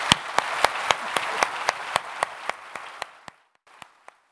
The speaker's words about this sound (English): And in the meantime, would you please join me in giving her a very warm round of applause?